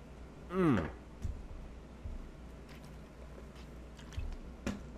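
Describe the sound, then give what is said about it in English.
A short, loud slurping sip of coffee with a wavering pitch, followed by a few faint wet clicks and swallows over quiet background. No talking. “Let me just sip that really quick.”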